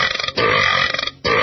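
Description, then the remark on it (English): Loud, raspy burps, one long drawn-out belch broken by short pauses into a few rough bursts, with no talking. “That's 555. Burp Enders. Call today and stop being so gross.”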